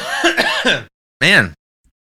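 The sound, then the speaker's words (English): A loud cough: a longer, rough hacking burst, then a brief pause and one shorter, sharp cough, with no talking around it. “I got a cough.”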